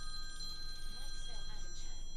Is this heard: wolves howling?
no